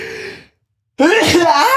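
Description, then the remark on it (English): A single loud, forceful sneeze bursts out after a short silence, preceded by a softer, drawn-out vocal sound like a building inhale. “Bless you, thank you.”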